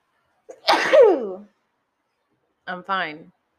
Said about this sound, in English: I'm fine. I'm allowed to sneeze in my own house. There's nobody here. I'm fine.